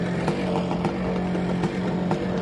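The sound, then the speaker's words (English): A two-stroke dirt bike engine being run outside buzzes steadily with a raspy, constant drone, punctuated by a few brief sharper bursts of throttle. No one speaks. “That's two-stroke people for you right there. That's what two-stroke people do. You know, they just run their bikes outside.”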